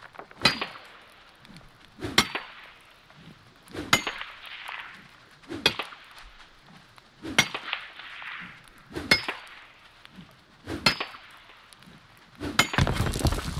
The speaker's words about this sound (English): Just that sound when your pickaxe hits like an iron vein. Mm-hmm. It's just that sound and it echoes across.